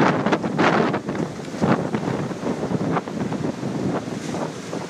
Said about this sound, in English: Is this too windy for you? It ain't too windy for me. Tell you what, it ain't too windy for me. I'm thinking that it's just right.